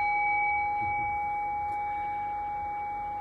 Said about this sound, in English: Ring the bell. Make it official.